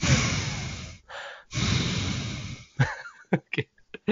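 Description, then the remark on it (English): Heavy, loud breathing right up against the microphone: two long, rushing breaths with a brief pause between, followed by a few short, sharp huffs and gasps. “stop breathing into the microphone. All I hear is...”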